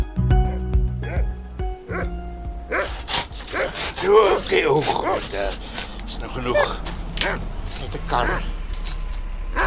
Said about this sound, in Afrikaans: Dan geleer om vir elke leerling te blaf.